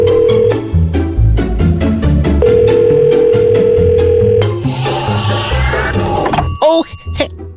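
A telephone rings in repeated steady tones over a busy, cluttered background, then gives way to a higher electronic warbling trill and a few quick chirps near the end.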